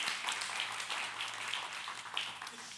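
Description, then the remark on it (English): An audience at a morning church service claps in another steady round of applause for a woman, a dense wash of many hands at even loudness throughout, with no voices standing out. “would you give her another round of applause, please?”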